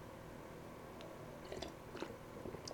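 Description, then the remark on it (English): Quiet sipping of Black Rifle Coffee Company coffee from a mug: a few soft slurps and wet mouth clicks spaced over a couple of seconds against a faint steady hiss, with no talking. “Now let me take a sip.”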